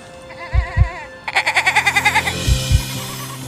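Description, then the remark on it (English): Three billy goats on a trail bleat in two long, quavering cries, the second louder and rapidly pulsing, with a few dull low thumps underneath and no talking. “Three billy goats paving the way.”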